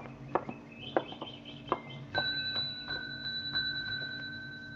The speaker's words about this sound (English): Oh, there's a bell over there on the desk. That might be a help.